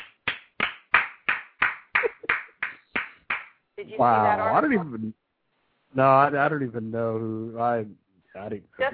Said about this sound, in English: Very, very, very, this is the last clap of the night, and it's probably the biggest clap.